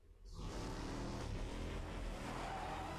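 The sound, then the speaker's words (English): A car engine roars up quickly from near silence and holds a loud, steady drone with rumbling low tones as the car accelerates hard in an attempt to jump over a border wall. “They're trying to jump over the border wall in the car.”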